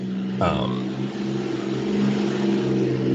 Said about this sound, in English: That's a loud-ass car.